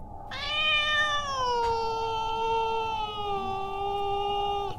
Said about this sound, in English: What? I can't understand you. I don't speak cat. Oh, hey, quit whining.